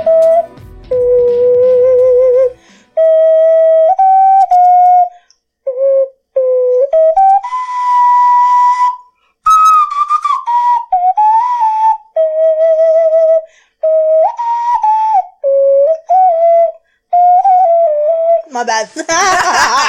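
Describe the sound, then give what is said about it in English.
An ocarina plays a slow, breathy melody of clear, pure sustained notes in a middle-high register, moving stepwise between held tones with brief pauses, ending in a short noisy burst. “I appreciate you bringing in your ocarina so I can see it.”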